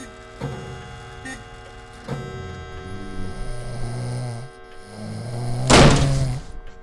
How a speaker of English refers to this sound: Yes, it is the sound of my snoring.